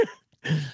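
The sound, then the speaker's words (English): A short cough followed by a rough, gravelly throat clearing, two quick bursts separated by a brief silence. “That performance there is triggering a coughing fit.”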